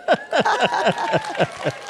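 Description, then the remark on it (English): A short burst of audience applause, a quick, fairly even run of loud claps lasting about two seconds, with no talking over it. “No, we that means applause.”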